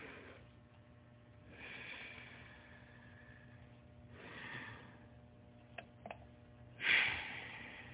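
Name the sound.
deep breaths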